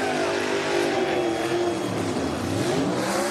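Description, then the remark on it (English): A Joe Gibbs Racing race car does donuts at New Hampshire after a win, burning down a used set of Goodyear Eagle tires. Its engine roars and revs continuously while the tires spin, producing a dense, steady rush of noise without pause. No voices are heard. “As Christopher burns down a used set of Goodyear Eagles.”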